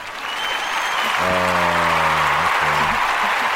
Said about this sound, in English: Thank you, thank you. They have an applause button. Let's see.